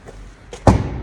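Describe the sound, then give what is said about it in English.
The boot of a car nicknamed Optimus, released by a foot sensor: a low rumble, then one sudden loud clunk as the latch lets go, followed by a brief rattling thud as the lid lifts. No one speaks. “Hey, open the boot with my foot.”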